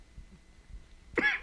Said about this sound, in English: What's your temperature? Because you coughing and shit. You saw you heard. Well, that's a sweet tea, man. That's a lot of That must be a northern thing. Because I have never heard of nobody coughing from no sweet tea.